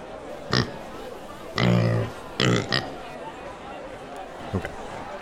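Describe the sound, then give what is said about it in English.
A voice imitates a pig, letting out several short, loud grunting oinks in quick bursts over a low murmur of background chatter. “Wake up, pig.”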